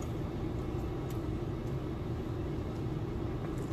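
A steady, loud low rumble of motorcycle engines idling and revving as outlaw bikers rev up their bikes on a Saturday afternoon with low humidity, holding an even throaty drone throughout with no voices.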